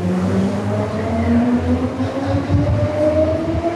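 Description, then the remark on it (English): A metro train in Medellín rumbles steadily along its tracks on the way to Comuna 13, with a low continuous drone and rising tonal whine from the motors, loud as if heard from on board. “made our way on Medellin's metro to what is known as the infamous Comuna 13”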